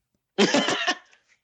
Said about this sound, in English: oh, sorry, I keep burping, it's the fucking cider.